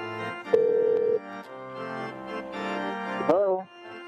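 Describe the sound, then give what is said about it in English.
A phone line rings once on an outgoing call, a single steady electronic tone lasting under a second, set over a faint humming musical background with a brief warbling sound near the end. “Come on, pick up.”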